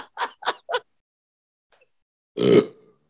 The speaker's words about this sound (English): That was a good burp. It was a good burp.